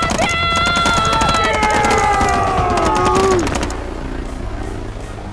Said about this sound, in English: Grab a rifle off the squad leader and fire at the helicopter! Otherwise, we're screwed! All right. Anywhere with a gun! Attack the helicopter!